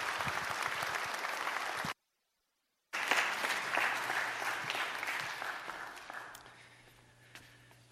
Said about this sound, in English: Let's give her a round of applause and thank her for her time.